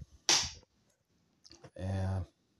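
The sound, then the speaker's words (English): A chair being moved: a sharp, noisy scrape or knock, a brief pause, then a low, buzzing groan of the legs dragging for about half a second. “Quite a few of us, I'm just going to move my chair, quite a few of us floating down this river.”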